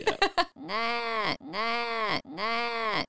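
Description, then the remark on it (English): A voice mimics a baby's bleating cry: three drawn-out, wavering 'naaah' wails in a row, loud, after a few quick clipped sounds at the start. “I pray there'll be a moment where a baby goes like, nah, in the background, and then...”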